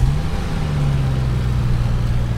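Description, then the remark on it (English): A steady car engine hums from inside the vehicle while driving, a low droning tone that shifts slightly in pitch with road noise underneath, continuous and fairly loud throughout. “Must be Ken's car. Let's slow up.”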